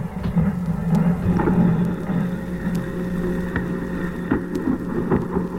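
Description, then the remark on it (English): Gunfire from a 21-gun salute echoing across the plaza at the Capitol building as John F. Kennedy's casket lies on a caisson: a few sharp, widely spaced reports, each trailing into a long rumbling echo over steady low roar and hiss, with no voices. “A 21-gun salute is echoing across the plaza here at the Capitol building as the casket of John Fitzgerald Kennedy lies on a caisson at almost the exact spot where less than 3 years ago he was pronounced the President of the United States.”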